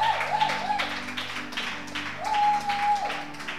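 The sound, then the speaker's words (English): A crowd gives a standing ovation and clap offering, a dense wash of overlapping hand claps with no clear rhythm, joined by a sustained high tone that comes and goes twice. “Okay, so with a standing ovation and a clap offering, let's invite the mother of the house to take us through.”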